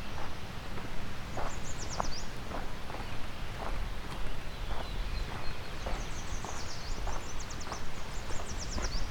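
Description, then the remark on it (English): A northern parula sings twice in a sandy meadow near the beach, a thin buzzy trill climbing upward, while steady footsteps crunch along at a walking pace. “We've got some northern perula here.”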